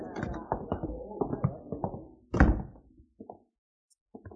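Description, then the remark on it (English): A rapid series of wooden knocks and thumps builds to one loud, heavy bang as an office door is forced open, followed by a few softer clunks and brief silence. “Get that office door open.”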